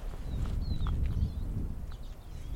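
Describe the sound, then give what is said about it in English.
Siskins flying over under cloudy skies, heading between two sets of trees, give a few thin, high, drawn-out whistled calls, some sliding downward, faint over a steady low rumble with soft thudding underneath. “Those birds flying over, they sound like siskins to me.”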